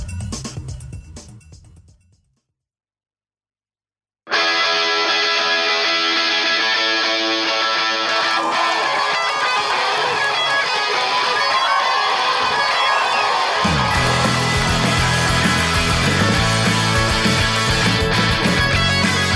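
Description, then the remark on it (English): A brief sound gives way to a short silence, then loud, sustained applause and cheering from an audience in Vancouver erupts and holds steady, with a deeper rumble joining in toward the end. “Thanks for that amazing round of applause, Vancouver.”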